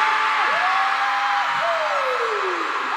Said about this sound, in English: You guys better scream like this all night, okay?